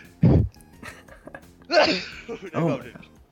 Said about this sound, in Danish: Og så skal jeg tror, jeg skal nyse.